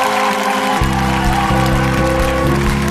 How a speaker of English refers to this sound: You hear the clapping right away.